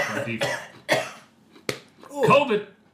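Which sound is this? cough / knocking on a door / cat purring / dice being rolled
cough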